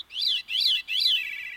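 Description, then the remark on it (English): A veery's fluting, ethereal song in three swirling phrases, clear, sung as two separate melodies at the same time, one rising while the other descends, with no voices present. “That lets some songbirds, like this veery, sing two separate melodies at the same time.”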